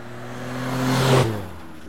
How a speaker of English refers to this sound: Don't move. There's a car coming.